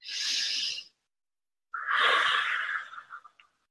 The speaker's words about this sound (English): just sit there in your stall and breathe in through your nose and then out through your mouth with the longest out breath that you can, the longest exhalation that you can. 2 minutes.